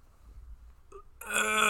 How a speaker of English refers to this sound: I drank more Pepsi, and I've just been burping a whole bunch before we started doing this episode, but now it's becoming a real issue because I need to burp now again,